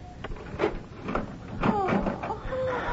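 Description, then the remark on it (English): A key rattles and clicks in the lock of a bedroom door, followed by the door creaking open, with scraping and thumps over a few seconds. “Is the door locked? Oh, yes. The key is here somewhere.”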